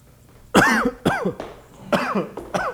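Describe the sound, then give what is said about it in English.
A series of harsh, hacking coughs, four bursts in quick succession, loud, with a raspy, wheezing edge between them and no talking. “That's not a medicinal cough.”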